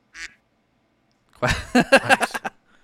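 A brief nasal squawk, a short pause, then a rapid run of about six loud duck quacks, close and clear, with no talking.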